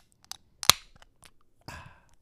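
A drink can snaps open with one sharp crack, followed by faint clicks and a short burst of fizzing hiss a second later. No voices.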